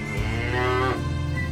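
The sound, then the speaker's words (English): A single long, loud cow moo lasting over a second, a low droning bellow with a rising and falling pitch, with no talking. “Do you know how boring cows are?”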